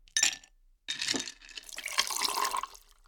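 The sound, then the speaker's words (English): A short clink of glass, then liquid pours steadily into a glass with a bright, splashing gurgle for a couple of seconds. It is fairly loud, with no voices. “With that, pour a glass or a cup of something, and let's dive in.”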